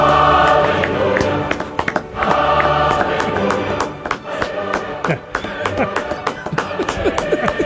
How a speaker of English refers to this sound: Should anyone point out that it's me clapping?